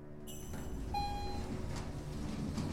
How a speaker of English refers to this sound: The doors close, and I ascend two more floors and exit.